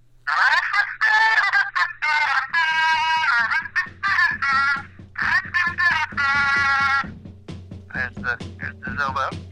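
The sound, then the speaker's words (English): A kazoo buzzes a tune over a thin, telephone-quality line: a run of nasal, reedy notes, some held and some clipped short, with brief pauses and a steady low hum underneath. “Do you have a kazobo handy?”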